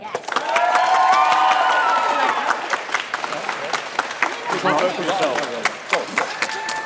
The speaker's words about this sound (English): Okay, so at the end, we've got team spending. So give them a round of applause if you think they won the debate.